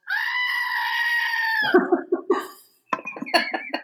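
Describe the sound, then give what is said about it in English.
A goat lets out a long, loud, human-like scream lasting over a second, followed by a burst of rapid, choppy bleating and a final sharp cry, alone. “The screaming goat came into our lives at the right time.”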